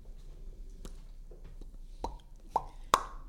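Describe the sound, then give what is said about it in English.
A series of about four sharp pops spaced irregularly, starting faint and growing louder, with the last two ringing out brightly over a quiet background and no talking. “Wow, so many pops.”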